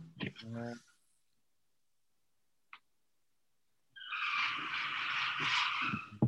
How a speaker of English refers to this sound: That was a car. What? Did you? That sounded like a car in the background. Is that not? Oh, that's a screen opening up.